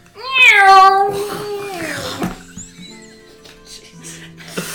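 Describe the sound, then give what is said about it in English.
A single long, loud cat meow with a rising then gliding falling pitch, followed by softer rustling and faint background noise. “I thought you were allergic to cats.”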